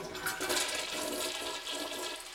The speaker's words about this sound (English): Flush. Cue the flush.